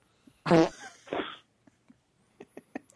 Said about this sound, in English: No, but he farted in my face one time. Oh, Star Lord. More like Fart Lord.